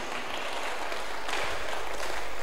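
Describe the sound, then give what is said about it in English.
An audience at a church service claps steadily for a couple of seconds, a dense, continuous wash of many hands at moderate loudness with no voices over it. “You can clap better than you are doing.”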